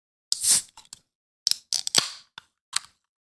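A can of mango limeade Polar seltzer cracks open for a refill, with short fizzy hisses, a sharp pop and a few scattered metallic clicks around it, heard alone without any talking.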